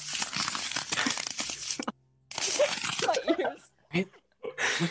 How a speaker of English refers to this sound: I put it as crunching. I don't know. Why would you need a crunching sound effect at any time? When are you like, damn, I wish I could hear somebody crunching right now.